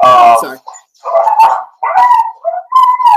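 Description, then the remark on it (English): A puppy barks and yelps in several short, high-pitched bursts over a few seconds, fairly loud, with brief pauses between them. “Puppy.”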